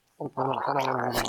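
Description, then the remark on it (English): Someone gargles water: a short throaty burst, then a steady, loud, bubbling gargle with a voiced hum running through it for about a second. “Gargler. Hell yeah.”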